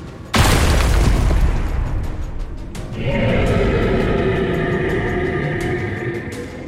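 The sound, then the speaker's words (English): The Queen of the Carnivian touches down: a sudden, deafening boom with heavy low rumble hits, sending a shockwave through the earth, and rolls on for seconds, then gives way to a sustained, throaty roar with layered tones that keeps going until the end. “The Queen of the Carnivian descended, touching down with a deafening roar, sending a bone-rattling shockwave through the earth.”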